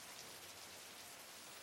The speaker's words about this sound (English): Presently, she begins to feel the first droplets of rain falling on her head and shoulders.